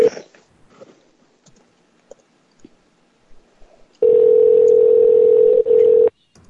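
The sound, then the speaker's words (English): A phone call's ringing tone while the call goes unanswered: one loud, steady, mid-pitched electronic tone lasting about two seconds, preceded by a few faint clicks and rustles. No one speaks. “Wow, Roy normally picks up by now.”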